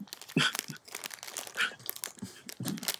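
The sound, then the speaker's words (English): Crinkling of a crisp packet mixed with crunchy chewing of crisps, coming in several uneven crackly bursts over a few seconds, with no talking. “did you come back with crisps as well so we can hear you crunch?”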